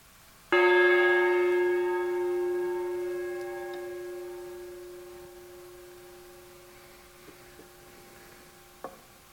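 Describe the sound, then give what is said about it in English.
A single gong is struck to lead listeners into silence, ringing out loudly, its rich layered tones sustaining and slowly fading over several seconds into near silence, with a few faint small knocks near the end. “But anyway, as I sound the gong, just drop into the silence.”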